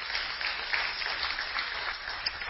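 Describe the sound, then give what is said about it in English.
An audience at a church service claps for the worship team, a dense wash of overlapping hand claps that holds even and moderately loud for the whole stretch, with no voices standing out. “Yes, you can clap.”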